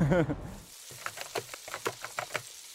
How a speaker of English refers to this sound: Frying food scares me because it's boiling oil. I was terrified of the oil coming out of the pan and getting to my skin.